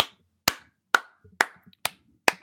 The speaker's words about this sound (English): Can I get a round of applause for my boy, the young Yank, Weston McKennie?